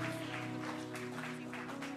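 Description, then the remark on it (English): A crowd of people claps steadily, a dense, continuous patter of many hands over a sustained musical tone that holds underneath throughout. “Just right now, just keep on clapping.”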